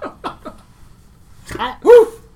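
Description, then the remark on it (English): A dog barks in short bursts: three quick, lighter yips, a brief pause, then two fuller, louder barks. “I can actually call you Arthur because it's a. You're a dog.”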